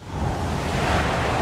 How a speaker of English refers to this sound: Ah, this dang rain. I can't even see with the headlights on out here.